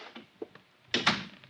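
A door is pushed shut, with a couple of light clicks beforehand and then a solid double thud as it closes, followed by a faint fading rattle.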